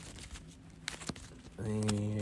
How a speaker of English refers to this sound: Let me shuffle my deck real quick.